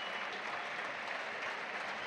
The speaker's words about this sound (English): Kyle Reid's coming off. Boo! Let's clap Reid. He's had a good season, Reid. He's ace. Very good season.